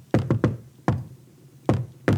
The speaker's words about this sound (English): Wait, can you tell us what the knock was? Can you share it with us?